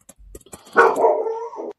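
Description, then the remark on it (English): A dog lets out one long, drawn-out bark that trails into a whine, fairly loud, preceded by a few faint clicks and no talking. “Well, your dog agreed with me too.”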